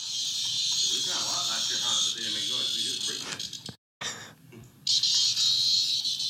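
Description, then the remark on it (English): A video of a screaming cicada plays: a loud, harsh drone buzzing steadily with people talking underneath, cutting out briefly near the middle and then surging back in at full volume. “Cicada scream.”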